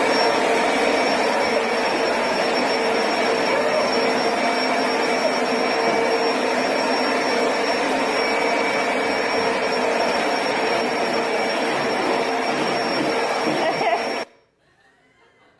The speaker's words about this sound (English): So proof that pastors actually do vacuum.